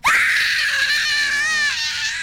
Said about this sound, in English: And Anif could do nothing but scream.